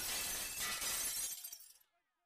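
glass window shattering

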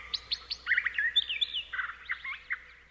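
flock of birds chirping

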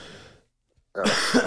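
cough

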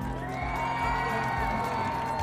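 crowd cheering

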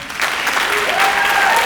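audience clapping

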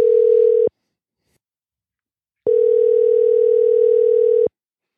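phone call ringing tone

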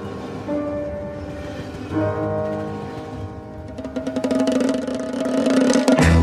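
train on rails

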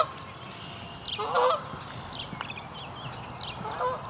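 canada goose honking

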